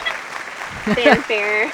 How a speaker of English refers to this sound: We've got some applause happening. Nice.